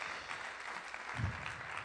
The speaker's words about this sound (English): And then finally, we just got to give one more big clap.